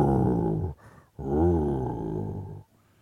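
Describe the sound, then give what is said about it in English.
A person imitates the growl of Benny, a one-eyed dog: a short rumbling snarl, a brief pause, then a longer, louder wavering growl, alone with no talking. “Benny growls at Bruce when Bruce comes in the room”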